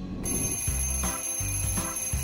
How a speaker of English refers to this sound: I just need 5 more minutes. That's probably what you think when you hit the snooze button on your alarm and decide to spend a bit more time in bed.